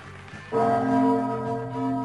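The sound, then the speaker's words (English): A set of bright chime bells, a radio station time chime, rings out from about half a second in, layered sustained tones that hang and slowly fade, clear with no talking. “Okay, chime time.”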